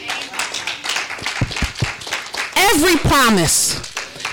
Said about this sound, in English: That's, listen, I'm clapping myself for that one.